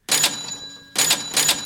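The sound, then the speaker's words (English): A bright metallic bell, the 'old Tommy Bell', rings loudly to open a food fight cage match of eating wings, in two quick bursts, each a rapid rattling series of strikes over sustained high ringing tones, with a short fading gap between them and no talking. “Oh, I got to do the bell again.”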